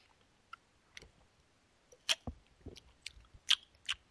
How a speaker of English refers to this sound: I got to do the first sip. Oh, that's great. I got to do the first sip. Oh, you haven't done the sip.